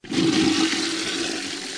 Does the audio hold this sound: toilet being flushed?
yes